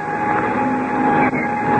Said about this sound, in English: Well, I'll jump into the front cockpit and get the engine started. Well, we're all set any time. All right. Here goes the starter.